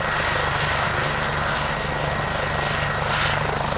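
Helicopter rotor blades thump steadily overhead in the western Wisconsin sky during a National Guard search-and-rescue disaster simulation at Fort McCoy, a loud, continuous low chopping with a constant engine whine above it, no voices.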